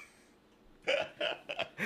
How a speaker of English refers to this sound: He never burps all day, but as soon as he gets in front of the camera... I get nervous. It can either come out the front or the rear.